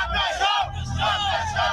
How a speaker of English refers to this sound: A young man joins her. Others in the crowd chant the same desperate message.